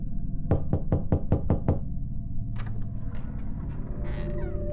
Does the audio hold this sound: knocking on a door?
yes